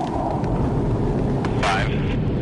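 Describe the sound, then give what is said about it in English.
A steady, rumbling roar of three F-18 jet fighters, flying at almost the speed of sound to launch Perdix drones, passing overhead fills the whole stretch, loud and continuous, with a brief rising whine swelling near the end. “This time, the Perdix will be launched from three F-18 jet fighters, just as they would on a real battlefield.”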